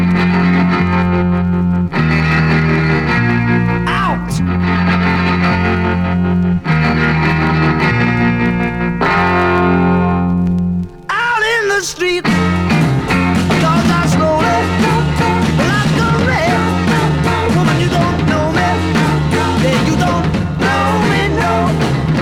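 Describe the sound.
An early-pressing mono rock record with loud, distorted electric guitar chords, a brief break near the middle, then a busier full-band section with shouted lead vocals over driving drums.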